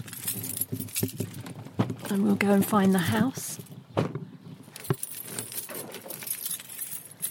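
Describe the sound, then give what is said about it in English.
Keys jingle and clink in a steady rustle as a person puts them into a bag while gathering their things to head out in Suffolk, with the person speaking briefly partway through. “Put my keys in my bag.”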